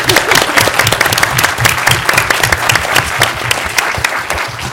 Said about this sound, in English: So I just want to thank him and ask you to give a round of applause.